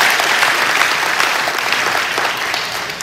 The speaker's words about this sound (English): Can I have a round of applause for that one? Or an amen or something.